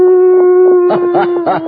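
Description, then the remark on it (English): A person imitates a coyote howl, holding one steady, sustained wavering tone, with a few rough, choppy yips breaking in over it toward the end. “This has to be a coyote.”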